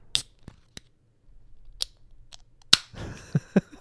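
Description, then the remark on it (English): A few light clicks and taps, then a beer can cracks open with a sharp pop and a short fizzing hiss, followed by a couple of soft knocks. No one speaks. “That was a good crack.”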